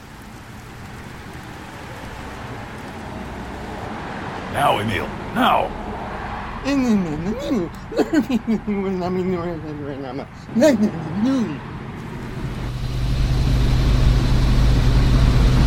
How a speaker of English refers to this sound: Look, a car is coming.